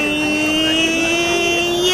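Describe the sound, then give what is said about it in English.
A car engine hums steadily and loudly, its droning tone climbing slightly in pitch as the car drives past, with no talking over it. “Oh fuck! That car!”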